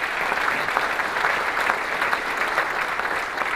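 Sustained audience applause fills the room, a dense, steady wash of many hands clapping at an even, fairly loud level with no voices standing out.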